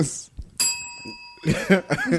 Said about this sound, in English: By the way, I meant to mention that when you hear the bell, stop.